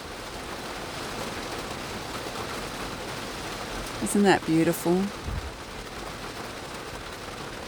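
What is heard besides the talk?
rain falling outside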